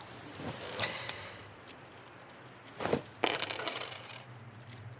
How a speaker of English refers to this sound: This is the I Ching, right? I toss the coins, you consult your little book.